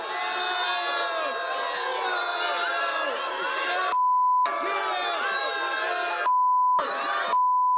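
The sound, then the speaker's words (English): A loud crowd gathered for Justin Trudeau chants and shouts in unison, then three steady, high-pitched censor bleeps cut in, fully replacing the chanting for a moment each time before the crowd returns. “They're having to beep it out.”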